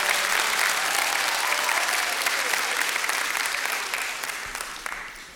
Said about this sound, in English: Let's give him a round of applause there.